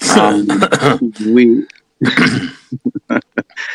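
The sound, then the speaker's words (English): A sharp sneeze bursts out, followed by throaty, sputtering vocal noises and a few short clipped breaths or sniffs trailing off. “bless you.”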